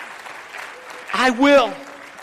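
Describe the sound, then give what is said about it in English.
A church audience claps as praise to the Lord in a steady, dense patter of applause throughout, with a single voice briefly calling out over it midway before the clapping carries on. “Somebody give a little clap offering of praise to the Lord.”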